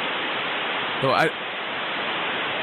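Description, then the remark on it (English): Dial-up modem handshake noise played through the modem's speaker: a loud, steady rush of harsh static fills the whole stretch, broken briefly by a short warbling, rising tone near the middle. “Like, I guess, because it was coming through the modem's, like, speaker, was it actually necessary to have that sound make a sound?”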